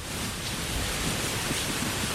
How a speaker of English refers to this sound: What is this? This sounds like rain. Rain.